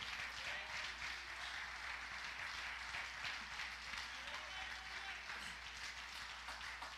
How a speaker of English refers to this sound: Stand to your feet. All over the room, clap your hands to the Lord.